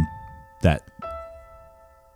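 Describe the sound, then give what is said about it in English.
Bright, bell-like piano notes ring out one at a time in a slow, spaced rhythm as the intro of a modern Christmas song in 6/8 time, each tone sustaining and fading, with a brief voice cutting in early on. “That sort of bell-like piano intro.”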